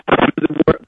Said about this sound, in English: Nope. Put him on hold. Put him on hold. See if we can come back to him before the top of the hour. We can't hear through the broken up phone call.